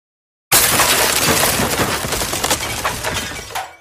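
A sudden loud crash as several figures break through glass windows above an atrium. Several seconds of dense tinkling and clattering shards follow as they rain down, with no voices.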